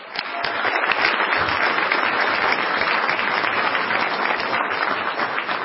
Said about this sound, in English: Let's give a big round of applause to these seven organizations.